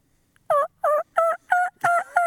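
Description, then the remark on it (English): A wild turkey gobbles before first light in six loud, evenly spaced bursts over about two seconds, each a short warbling rattle, clear with no voices. “We just want to hear them gobble four more times for no reason.”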